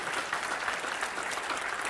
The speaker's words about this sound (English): You need to clap your hands again.